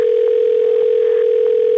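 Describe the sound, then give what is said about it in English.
A steady telephone dial tone hums loudly and continuously for under two seconds as someone phones their agent, a single unbroken pitch with faint background noise and no voices. “Wait one second till I get my agent on the phone.”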